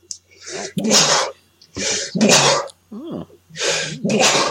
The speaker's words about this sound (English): I'm about to sneeze, so.